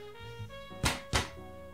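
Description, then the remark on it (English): Two solid knocks land about a third of a second apart, dull wooden thuds, with a faint steady hum in the background and no one speaking. “In the next vlog, tell her to knock twice.”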